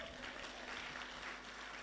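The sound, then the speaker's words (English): A crowd claps steadily, a dense, continuous patter of many hands that stays even in loudness throughout the short burst, with no voices standing out above it. “Clap if you are going to clap.”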